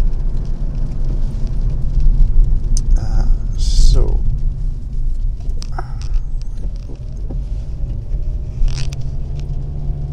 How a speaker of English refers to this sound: I've actually got in-bud earphones and I was wondering what the strange noise was. It's a pitter-patter noise, and I realised it's the rain on the window. So apologies for that. Surprising it picks that up. It's not even that heavy rain.